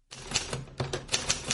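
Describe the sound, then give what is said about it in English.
Sharp clacks of typing on a typewriter, around seven keystrokes in an uneven rhythm over a faint low hum, with no voices. “has been typing her way out of isolation.”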